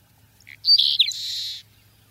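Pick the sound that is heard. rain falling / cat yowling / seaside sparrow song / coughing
seaside sparrow song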